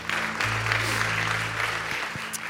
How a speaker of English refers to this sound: Let's give our amazing band a round of applause.